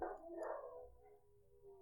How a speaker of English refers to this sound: I think I'll just let this go for a moment and let the dogs bark.